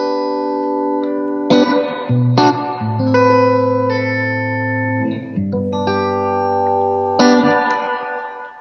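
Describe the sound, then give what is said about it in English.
Sustained guitar chords struck every second or two through the built-in spring reverb of a pedal amp, each washing into a splashy, slightly metallic reverb tail that lingers between notes; no one speaks. “It's a nice guitar like spring reverb, I would say.”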